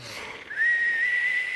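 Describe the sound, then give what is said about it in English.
A person whistles a bird-like call: a breathy start, then one long, steady high note held for about a second, loud, with no talking. “Some kind of weird bird”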